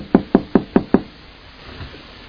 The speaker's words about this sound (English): Here, I'm knocking on the door.